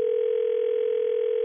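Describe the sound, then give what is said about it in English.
A steady telephone dial tone hums continuously as a call is placed to call a man back, one unbroken pitch with a slightly buzzy edge, clear and fairly loud with no voices over it. “So should we call him back?”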